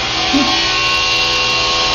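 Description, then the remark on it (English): A hammer drill operated by a robotic arm, a highly dexterous manipulator, runs continuously: a loud, steady, harsh grinding buzz that holds without pause for the whole moment, with no voices. “There's a hammer drill.”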